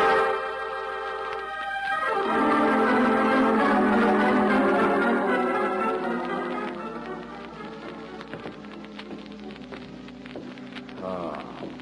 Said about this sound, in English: Sure, that bell's the one outside the pool and the fire alarm bell.